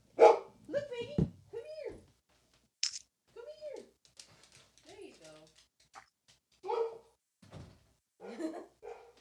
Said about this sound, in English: She'll just bark at I don't know what. Somebody's at the door, I guess.